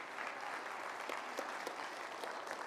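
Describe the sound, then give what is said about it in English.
An audience applauds steadily, a dense wash of many hands clapping at an even, sustained level with a few sharper claps standing out, and no one speaking over it. “Again, give them all a round of applause.”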